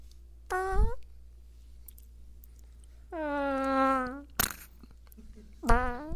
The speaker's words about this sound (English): That was supposed to be the longest fart ever.